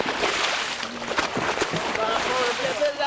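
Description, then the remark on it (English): A few sharp splashes as men in fins and masks drop into the water one after another, over steady sloshing waves and boat noise, with faint voices in the background. “One by one, the men put on their fins and masks and jump into the water.”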